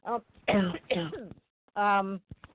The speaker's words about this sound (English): excuse me, I have a little cough here.